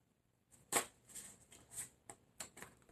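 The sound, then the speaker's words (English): Crisp papery snaps and flicks of tarot cards being shuffled and drawn for a reading, a sharp riffle followed by several softer, irregular card slaps, with no talking. “I need 7 more cards, please.”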